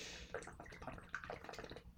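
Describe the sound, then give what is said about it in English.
Someone takes a quiet sip of water, a few small wet slurps and gulps spread over a couple of seconds, with no talking. “Sorry, need a sip of water.”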